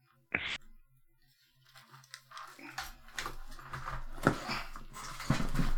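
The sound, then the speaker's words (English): A dog makes a single short, sharp noise near the start, followed by soft shuffling, rustling and faint scattered sounds over a low background hum that grows slightly louder. “So I'm gonna step out for 5 seconds and see if I can make my dog stop making that noise.”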